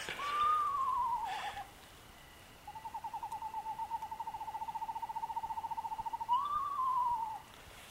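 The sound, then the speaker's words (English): An eastern screech-owl gives a quavering, descending whinny, then a long steady pulsing trill on one pitch, followed by another short whinny. The calls are clear, with no talking. “Yeah, we can hear a trill.”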